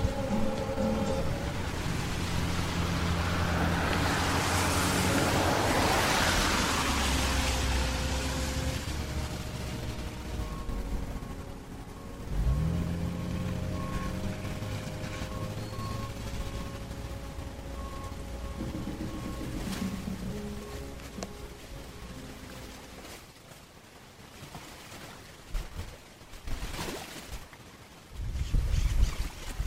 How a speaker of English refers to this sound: Storms are always on our mind, and last fall, as Hurricane Irma was approaching, they recorded in the seconds before the environment changed here, before that hurricane made landfall in South Florida.